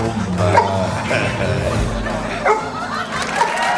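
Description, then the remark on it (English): In a comedy sketch, a seeing eye dog named Toby, acting as a translator, barks and whimpers in a run of short yips and whines across a few seconds, with a bit of chuckling mixed in. “through a seeing eye dog acting as a translator”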